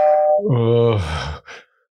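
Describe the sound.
A voice imitates a doorbell's ding-dong chime, singing two drawn-out notes that step downward in pitch, fairly loud, then a brief breathy trailing sound before silence.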